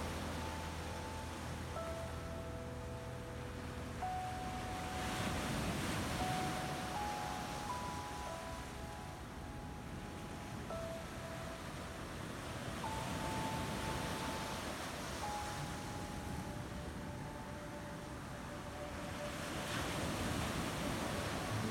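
Ocean waves wash ashore in slow, steady surges, each swell rising and fading every few seconds, with soft sustained musical tones drifting over the continuous surf.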